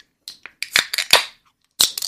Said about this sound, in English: You're going to open a can. Okay, let's open and then I'll explain.